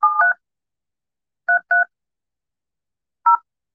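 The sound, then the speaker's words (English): Phone keypad tones beep in short dual-pitched presses as a phone number is dialed: two quick beeps, a pause, two more together, then one last tone after a gap, clear with no talking. “I thought maybe I had Tony's number on my other phone here. And I was going to give him a call”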